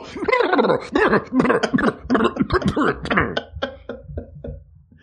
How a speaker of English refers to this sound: Are you okay? You keep coughing up tiny bits of blood into that handkerchief. Just a touch of dropsy.